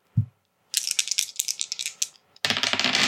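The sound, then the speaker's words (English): Dice rattle rapidly in a cup for over a second after a soft thump, then spill out onto a surface in a loud, dense clatter, coming up a 10. Fairly loud, with no voices. “Oh, but that's a 10 on the dice.”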